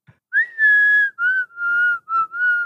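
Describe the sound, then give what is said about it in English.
A person whistles a short melody imitating a fluty synth melody, holding a long steady note and then three or four shorter, slightly gliding notes separated by brief pauses, with no talking. “Yeah, I'm literally I'm whistling.”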